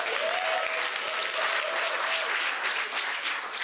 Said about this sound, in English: Please clap for my wife.